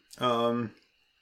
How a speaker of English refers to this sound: Sorry, I'm yawning, man. It's early, too.